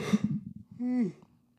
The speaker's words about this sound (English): You're yawning already. No, that's not yawning because I'm bored. I'm just yawning because I'm sleepy.